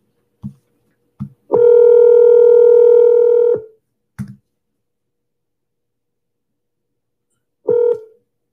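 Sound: telephone dialing tones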